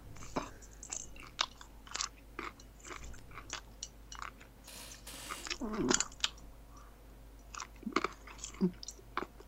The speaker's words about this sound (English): just chew. With me. Num. Num. Stop it, just eat.